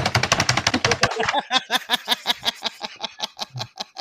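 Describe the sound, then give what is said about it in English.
Mechanical typewriter keys, on a typewriter hooked up to a computer and used to type a message to a friend, clack in a rapid, dense burst, then slow to a steady run of sharp, evenly spaced strikes. The clatter is bright and moderately loud, with no voices. “I have a mechanical typewriter hooked up to my computer.”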